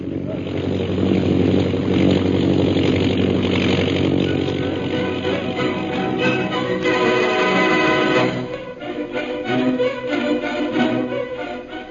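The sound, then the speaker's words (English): An airplane engine drones loudly and steadily as the plane flies high overhead toward a pass, heading northwest over jungle: a dense buzzing roar with layered harmonics that wavers slightly and briefly softens toward the end before carrying on. “An airplane flying toward the pass ahead.”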